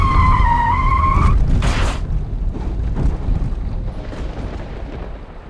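A loud, high tire screech wails for just over a second as a car at slow speed in treacherous conditions swerves out of the path of a young woman who runs in front of it, then a sharp burst of noise gives way to a heavy, rumbling roar.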